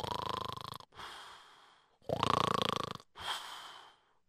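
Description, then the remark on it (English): A voice imitates snoring: two cycles of rough, rattling inhaled snores, each followed by a softer breathy exhale, fairly loud with brief pauses between. “He was snoring away.”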